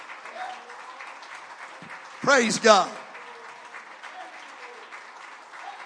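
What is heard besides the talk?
audience applauding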